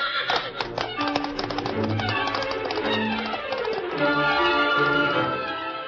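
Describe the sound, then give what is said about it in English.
Victor, Dan's horse, gallops into the camp of the Lone Ranger and Tonto, its hooves beating in a rapid clatter that slows and comes to a stop, with a steady tonal backdrop running underneath. “Meantime, having returned to camp, the Lone Ranger and Tonto were preparing supper when Dan's horse, Victor, galloped in and stopped.”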